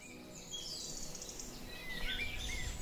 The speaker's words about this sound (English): And then we waited for the dawn chorus to come in.